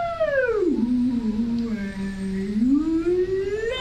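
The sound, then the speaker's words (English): A voice imitates a whale call with one long, loud, moaning tone that swoops down low, holds steady, then slides back up at the end. No other sounds accompany it. “I can speak whale! Radical dudes! Everyone, repeat after me.”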